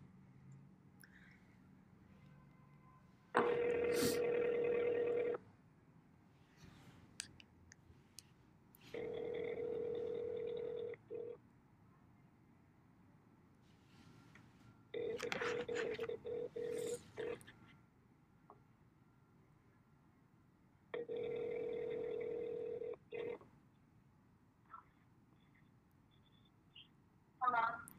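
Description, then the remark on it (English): A telephone call to a friend rings on the line: four long, evenly spaced ring tones, each about two seconds, fairly loud, with quiet pauses and faint background noise between them. “So today I want to call one of my best friends and ask her about what boundaries she wants to set and what does it mean to her.”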